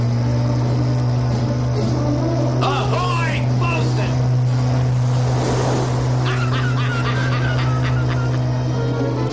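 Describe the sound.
The sport fishing motorboat Yellowtail speeds past in a harbor with a steady, heavy engine drone and rushing, churning water, loud throughout, while indistinct voices and brief squawking calls rise over the noise.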